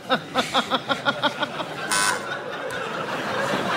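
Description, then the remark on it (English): A quiz show buzzer sounds as a quick run of about ten bright, evenly spaced electronic beeps, followed by a short burst of hiss and a low, steady wash of noise. “I just feel I haven't buzzed in for a while, and at the risk of losing a point”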